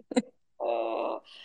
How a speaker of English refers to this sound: Sorry, just hold on, my dog's barking. We don't mind dogs. We love dogs.